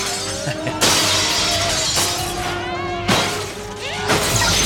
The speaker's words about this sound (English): So this group of, like, vandals are busted into the museum here and they're destroying things.